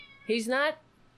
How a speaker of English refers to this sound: I got to put the cat over here.